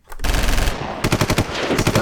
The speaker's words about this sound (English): Gunshots? That shit got gunned down, bro. Yeah. Maybe one shot.